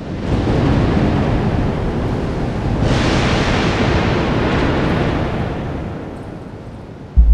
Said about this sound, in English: He stands, and thunder strikes in the distance.